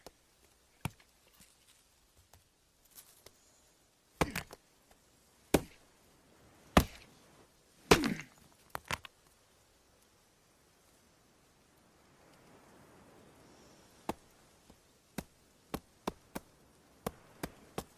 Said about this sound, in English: Whittling it away, realizing he can use a tool, sawing at that coconut.